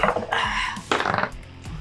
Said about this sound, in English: I need a roll for initiative. Oh, actually. Man. Give me my dice.